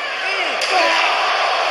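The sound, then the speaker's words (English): A sharp metallic slam of a steel chair shot hitting a wrestler during a wrestling match cracks once over a loud, roaring crowd that stays dense and steady throughout. “Chair may be more deadly than those shots. Oh. And you can hear the shots.”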